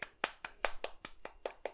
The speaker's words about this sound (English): That was me clapping for you.